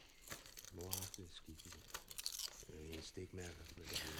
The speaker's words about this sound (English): Yeah, that chewing is me enjoying my chips, by the way. What kind of chips are those,